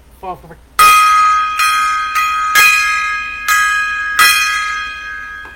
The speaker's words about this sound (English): The gong time. It's gong time.